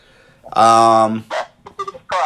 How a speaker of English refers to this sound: Now, I hear a dog. Yep. Yeah. Is that Albert?